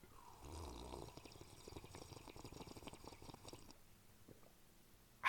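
Someone takes the first long, wet slurp of coffee of the day from a cup, lasting a few seconds before trailing into quiet, with a brief knock at the very end.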